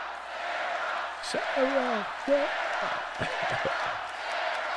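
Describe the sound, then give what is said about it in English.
The crowd at a rally for President Donald Trump chants in a steady roar of many voices, with a few louder shouted syllables rising out of the din. “Meanwhile, the crowd breaking out in a little chant here.”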